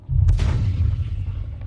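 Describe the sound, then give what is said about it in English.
A single loud gunshot cracks out in Vietnam, then a deep rumbling echo rolls across the hillsides and slowly fades over the next second or so. No voices are heard. “That was a gunshot.”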